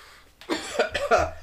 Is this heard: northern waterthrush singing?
no